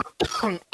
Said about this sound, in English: Goddamn. Man. Still coughing off that.